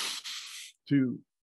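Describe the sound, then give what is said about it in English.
A steady, airy breath drawn in through the nose for under a second as part of a reset breathing exercise, then a brief pause and a short spoken word. “4 seconds in the nose, 8 seconds out of the mouth with the O sound.”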